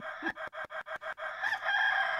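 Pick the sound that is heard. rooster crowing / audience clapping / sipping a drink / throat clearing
rooster crowing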